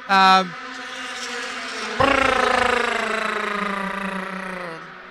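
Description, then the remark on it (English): Indy Lights race cars scream past on a 2.5-mile track: one loud, brief burst of engine whine at the start, then another high-pitched engine sweeps by and slowly fades as it drops in pitch. “Damn Indy lights! What the heck? So, there's a lot of cars.”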